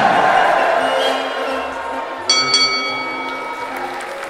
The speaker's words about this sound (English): You hear the crowd cheer, and moments later, Charlemagne announces your wrestling troupe, and you step into the lights.